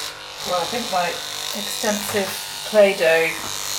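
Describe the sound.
Electric hair clippers buzz steadily as hair is cut on someone sitting in a bath, a constant high-pitched hum running under people talking in a conversational back-and-forth.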